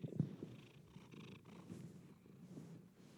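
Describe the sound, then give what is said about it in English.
A cat lying on a person purrs steadily right against the microphone, a low, rumbling, continuous vibration with a soft rhythmic pulse and no talking over it. “I'm sorry, I got very distracted because there's beautiful cat on me.”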